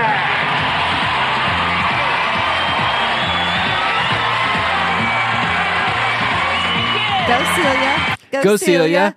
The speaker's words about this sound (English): I mean, she comes out to just a roaring crowd.